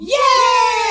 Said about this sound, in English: Yes! Grunt birthday party from Halo 3.